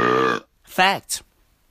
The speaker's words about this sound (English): After the hiccup comes the show, bro. The real show. The real fucking show. The burp.